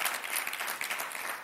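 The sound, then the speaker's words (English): A church audience applauds the worship team after worship, a dense wash of many hands clapping together at moderate volume, sustained without pause and with no voices. “Ooh, come on, give the worship team a good clap offering, amen.”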